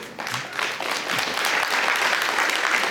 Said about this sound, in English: Thank you for that forced golf clap. I don't mind, I'll take whatever I can get.